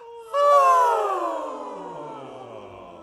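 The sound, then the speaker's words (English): A single drawn-out vocal yawn, demonstrated as a voice exercise from the highest note to the lowest, slides smoothly from a high pitch down to a low, breathy rumble, loud at the start and fading as it descends over about three seconds. “And I'm going to ask you to take what I would call is a yawn from your highest note to your lowest note.”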